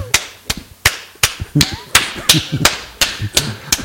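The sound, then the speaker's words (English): A person imitates a horse with a steady clip-clop of sharp mouth clicks, about eleven evenly spaced beats, with faint breathy vocal sounds mixed in between them. “I'm gonna do a horse.”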